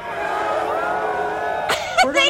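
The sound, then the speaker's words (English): A crowd answers a speaker's chant of "What are we going to do tomorrow?" with a jumble of overlapping voices, no clear unified shout, building into a few scattered louder yells near the end. “They don't know what they're supposed to yell about.”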